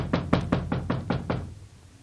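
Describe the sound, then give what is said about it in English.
A quick run of six firm knocks on a wooden door by someone wanting it opened, evenly spaced and fading slightly toward the end with no voices. “What do I have to do? Break this door in?”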